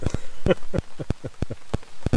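Rain patters on a hard surface at a campsite on Long Lake, irregular drops landing in quick, uneven taps over a steady wash, with a faint murmur of voices underneath.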